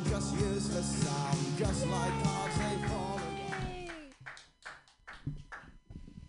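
Crowd applause with a long cheering voice riding over it for the first few seconds, then the clapping thins into scattered, uneven claps as it dies down.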